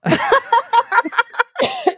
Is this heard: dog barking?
no